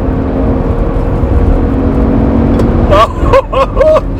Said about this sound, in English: That Roush Mustang I was talking about, you guys could probably hear the Maz absolutely purring.